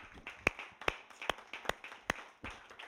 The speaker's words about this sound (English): Can you stand up with me today and give Jesus a hand clap for his word? Amen. We love you, Jesus.